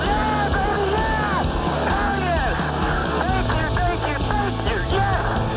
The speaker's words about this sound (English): Now Chase can just cruise the victory lane. The crowd roars. They're going to see for the first time Chase Elliott win in the Monster Energy Cup Series.